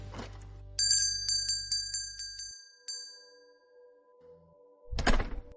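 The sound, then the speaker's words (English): A door's entry bell chimes in a quick run of bright, ringing dings that fade out as someone walks into a Starbucks coffee shop on a strip-mall corner, over a low rumble that cuts off, followed a few seconds later by a dull door thud. “Now, my client told me to meet in the Starbucks, so I pulled on in and ready for my eighth cup of coffee that day, got out, headed in the door.”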